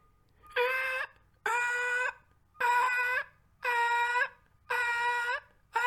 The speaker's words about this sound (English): What's with the ceaseless beeping? I don't know if you guys could hear that. There was like the beeping of some random vehicle backing up.